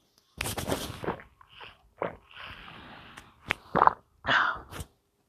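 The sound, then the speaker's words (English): A few slurping sips of water with a breathy intake, wet swallowing clicks and small gulps, then a sharp exhale after drinking. There is no talking. “But hang on a moment, I'm gonna take a sip of water, so just bear with me.”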